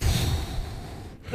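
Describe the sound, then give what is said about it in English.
A voice imitates deep, heavy breathing, a long breathy exhale, followed by the start of a sharp inhale at the end. “It's like the deep breathing. It's just like you're in labor.”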